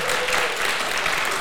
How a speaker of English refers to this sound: Do you guys like the movie? Clap if you like this movie, Fargo.